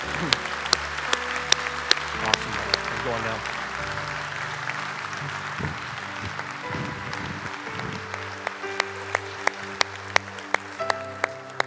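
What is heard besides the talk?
audience round of applause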